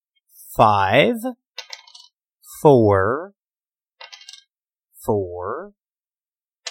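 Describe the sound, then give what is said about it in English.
Four six-sided dice clatter onto a hard surface in a couple of quick, light rattling bursts, rolled to set a creature's intelligence score, set between three drawn-out vocal sounds with falling pitch. “Okay, so roll 4d6 and drop the lowest.”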